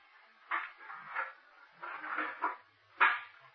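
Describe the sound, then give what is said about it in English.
A door opening downstairs, right below, heard as a faint series of muffled clunks and rattles spread over a few seconds, ending with a slightly sharper knock, with no voices. “Then I heard the door open.”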